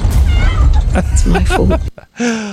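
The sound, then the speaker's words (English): A cat meows amid rumbling, cluttered background noise and overlapping vocal sounds, then a short drawn-out meow rings out more clearly after a brief pause. “So that was Bree running towards the cat meowing, I guess.”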